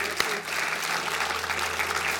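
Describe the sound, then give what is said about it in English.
A church audience gives the Lord a hand clap, applauding in a steady, dense wash of clapping that holds at an even loudness throughout, with a single sharper clap standing out near the start and no voices above it. “Give the Lord a hand clap, church.”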